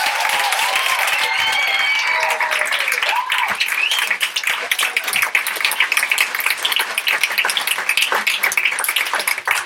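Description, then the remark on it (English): An audience breaks into sustained applause for a panel, a dense crackle of many hands clapping steadily for the full stretch, with brief cheers and whoops rising over it early on. “Can we give a round of applause to all of you?”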